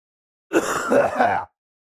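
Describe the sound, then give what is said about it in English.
A single rough, throaty cough lasting about a second with a few raspy pulses, then silence; no talking around it. “If you're listening to this, make sure you don't cover your mouth when you cough.”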